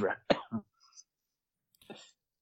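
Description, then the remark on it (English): A few short, harsh coughs in quick succession, followed by a pause and one quieter, breathy cough-like burst. “you don't need to cough your number one, …”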